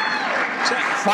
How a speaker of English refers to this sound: Joe made an appearance today. I don't know what this was, but somebody out there is really cheering for Joe, and you'll hear how it went here.